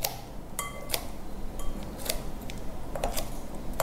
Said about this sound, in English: Ooh, actually I have quite large kimchi pieces here, so let me give that a quick cut through with a pair of scissors.